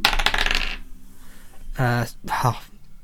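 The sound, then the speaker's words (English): Dice clatter and tumble briefly across a hard tabletop, fairly loud, for under a second, rolled for an attack roll. After a short pause, a couple of brief voiced sounds follow. “I said I wasn't going to use you again, Dice, and I just out of habit.”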